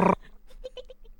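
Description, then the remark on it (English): A voice imitates a late-1990s dial-up internet modem tone: a loud, harsh burst, then a quick run of about half a dozen short, squeaky, mid-pitched chirps that fade slightly toward the end. “I finished my degree in 1998 and we were just about getting sort of dial-up internet, the dial-up tone.”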